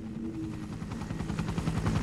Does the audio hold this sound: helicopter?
yes